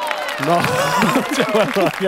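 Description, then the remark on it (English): A group of voices cheering together without much energy, overlapping calls and shouts that stay at a steady, moderate level for a couple of seconds. “There is some low gusto cheering in that cheer.”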